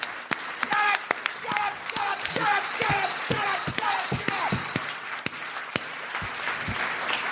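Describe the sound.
An audience applauds steadily for several seconds, a dense wash of clapping with some sharper individual claps standing out, and voices call out over it near the start.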